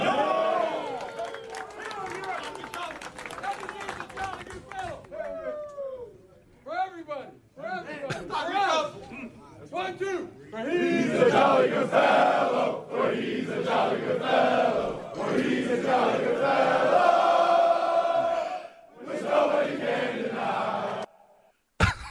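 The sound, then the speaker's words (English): The Michigan Wolverines team celebrates in their locker room in Houston on Monday night, with a crowd of voices yelling and chanting together in loud, overlapping bursts. The cheering swells and stays raucous, with brief lulls between rounds. “But here's the way it sounded in the Michigan Wolverines locker room down in Houston on Monday night.”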